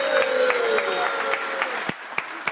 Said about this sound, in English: Okay, well, let's have another round of applause for all the student athletes here in Jack at Ohio State University. Thank you so much.